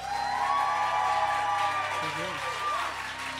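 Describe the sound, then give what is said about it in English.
A theater audience at Subculture, a theater space with a bar in New York City, applauds and cheers. A steady, dense patter of clapping carries a sustained high whoop riding over it and a few voices calling out, fairly loud throughout. “What a great crowd.”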